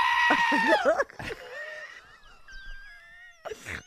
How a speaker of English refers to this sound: That's a goat, everybody. That's a goat. That's super fun.